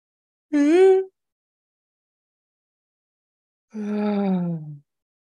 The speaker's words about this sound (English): Let's all take three deep breaths together. Actually, we're going to intermittent this podcast for a breathing moment. So we're going to breathe in together. Roll your shoulders up and back and breathe out.